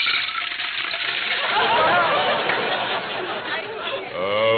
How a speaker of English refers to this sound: Well, there's water in the pitcher. Just pour it into the bowl.